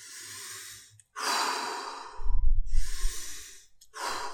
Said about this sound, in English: You have to get some guardrails in place that you can implement immediately when you feel yourself beginning to drift. My favorite guardrail is deep belly breathing.